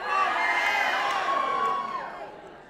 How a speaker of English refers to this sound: Wow, I heard a lot more guy cheers on that than I thought there would be, but that's all right.